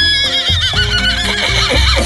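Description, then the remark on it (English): A 32-year-old thoroughbred horse named Borrowed Time whinnies loudly, a single drawn-out neigh with a shaky, wavering pitch lasting about two seconds, with no voices. “You've inherited this 32-year-old thoroughbred horse to care for day in and day out.”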